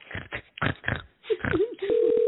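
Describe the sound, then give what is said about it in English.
Muffled, phone-line-quality sounds and a warbling tone give way to a steady, loud ringback tone that starts near the end, the ringing of an outgoing call beginning. “Dialing. One ringy dingy.”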